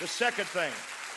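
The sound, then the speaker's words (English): A crowd claps steadily, a dense patter of many hands, while voices call out and cheer over it in short bursts. “Clap your hands to that and rejoice.”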